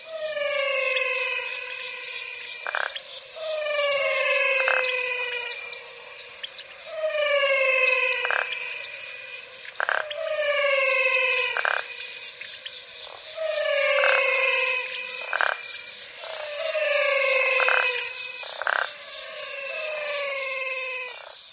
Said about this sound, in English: The Singing Frogs of the Pantanal